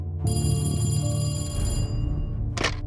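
A telephone bell rings loudly in the Mossler household in Houston in 1961, with a sustained metallic jangle for about two seconds, then a brief second burst begins near the end, heard alone. The call is from Candy Mossler's sister.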